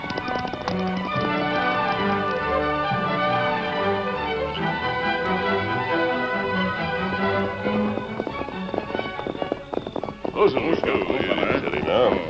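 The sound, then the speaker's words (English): Horses' hooves, including those of a horse named Silver, clip-clop in a quick, uneven patter near the end as riders set off, rising out of a dense bed of voices and background sound that fills most of the stretch. “Oh, here, your horse.”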